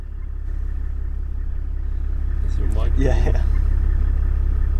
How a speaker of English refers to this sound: We're driving through this really tall, thick grass that kind of enveloped the car. It was almost like we were driving through a cloud. So this is the Kalahari sour grass. It's real thick.